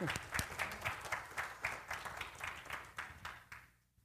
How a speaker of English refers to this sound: I'll clap on that.